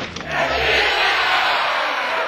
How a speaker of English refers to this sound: Oh, golly. I love the cheering. You know what the best part of the cheering is? Is that it's, you know, it's like the end of June.